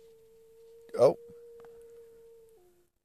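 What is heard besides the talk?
dog howling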